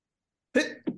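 A single sharp sneeze bursts out of silence, loud, with a breathy voiced tail and a brief second catch of breath right after.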